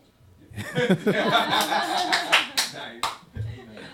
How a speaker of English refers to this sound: Why do we always clap when we laugh? Is this like a natural thing? Really good. Yeah, I don't know. It's just conditioned or something.